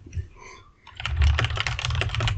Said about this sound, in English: What are you doing? Are you typing? Yeah, I was just thinking of a new name for the podcast this week.